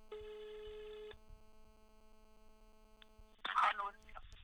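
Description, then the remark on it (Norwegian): A telephone ringing tone sounds once for about a second as an outgoing call is placed, then gives way to a faint, steady line hum before a brief louder rustle near the end. “Altså bare les opp nummeret til meg. Og så ringer vi. Ring nå.”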